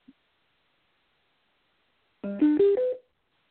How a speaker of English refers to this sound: I hear beeping. I assume that's a good sign. No, that's just the item. Turning on.